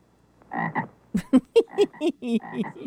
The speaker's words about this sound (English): So those frogs. It's a frog in here. That just sounds like me right now. Ribbit, ribbit. Anyway, so, thank you for the frog. That was delightful.